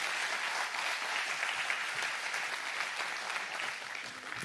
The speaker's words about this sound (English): Give these guys a big applause. Thank you. Thank you, guys.